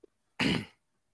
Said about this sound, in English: edit this because I coughed a little bit.